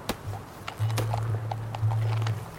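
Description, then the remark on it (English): A ridden horse's hooves clip-clop at an unhurried, ambling walk across the plains at sunset, a handful of sharp, uneven knocks, with a low steady drone humming underneath. “As his horse ambled on, something nagged at Campbell.”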